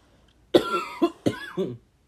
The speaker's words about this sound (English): You done with your coughing fit yet? Nope. Yeah. I'm good now.